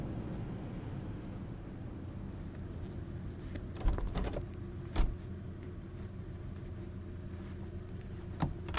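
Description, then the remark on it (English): A car engine idles with a steady low rumble throughout, broken by a few short clunks and clicks near the middle and end, with no one speaking. “Stop the car.”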